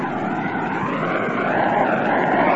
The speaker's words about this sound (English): The tying run is on second base. Nobody out. The seventh inning. An old man pandemonium is dancing around here in the Polo Grounds. Listen to the lads and lassies roaring.